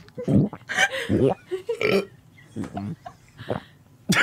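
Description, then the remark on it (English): A series of loud swallowing gulps, around seven throaty bursts in irregular succession with short pauses between, some with a croaky, voiced edge. “How do you swallow so loudly?”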